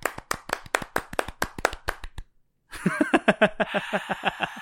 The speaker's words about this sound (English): So fucking congratulations. Congrats. We wish the best for you. I'm going to clap, but.